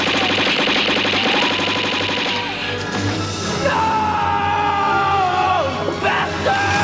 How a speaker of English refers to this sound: Like when Doc gets shot by the Libyans before Marty jumps back in time. He gets shot and there's this very affecting, romantic, big string line as Marty reacts to it and yells, "No!